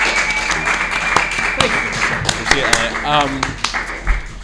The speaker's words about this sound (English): Well, thank you guys for coming to the show. Give our wonderful guests a round of applause. Rick Overton. Jamie Costa.